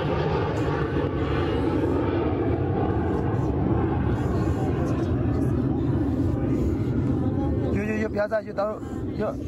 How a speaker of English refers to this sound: Myanmar military jet circles a primary school. After seizing power in a coup, they're trying to crush an uprising, demanding democracy. When they think it's safe, they run. But the plane circles back.